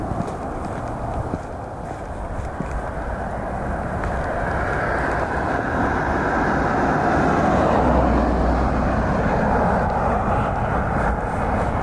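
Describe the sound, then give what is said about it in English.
A car drives past on a road by a driveway, its steady tyre and engine rumble swelling gradually before easing off, with a broad hiss of outdoor background noise throughout. “So this is me walking down my drive, and a car driving past the road into my drive.”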